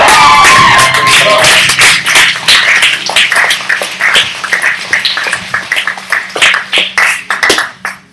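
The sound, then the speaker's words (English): An audience applauds to welcome back a returning speaker: dense clapping with a few cheers and voices at the start, then thinning to scattered, uneven claps that fade out over about eight seconds. “This time you did, and you still clapped, so I appreciate it.”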